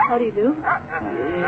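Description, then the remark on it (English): A dog lets out a quick run of loud barks and yelping whines, the calls rising and falling in pitch over about a second and a half. “Yes, the dog.”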